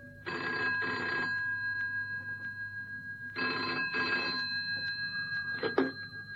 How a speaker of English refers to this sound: Cannon had hardly sat down when the phone rang on the direct line.